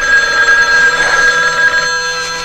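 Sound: telephone bell ringing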